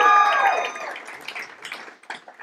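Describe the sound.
A short burst of applause at a church gathering as the next speaker is welcomed, with a voice-like tone at the very start, the clapping loudest at first and then thinning into scattered claps over a couple of seconds.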